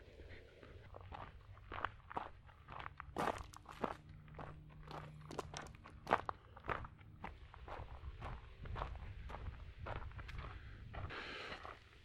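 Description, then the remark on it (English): Steady footsteps crunch along an outdoor path among trees near a stream, a regular walking rhythm of sharp, gritty steps over a low rumbling background, with no one talking. “Let's just walk for a minute, okay?”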